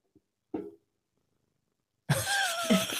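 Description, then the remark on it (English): A male cat named Ruby, the show's mascot, purrs loudly during the final second, a rough continuous rumble, after a short soft sound and a stretch of near silence. “He's like purring like crazy.”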